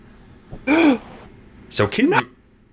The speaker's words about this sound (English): So Kidman is on the floor, and we get an amazing springboard moonsault by Paul London to Kidman on the floor. I gasped at that.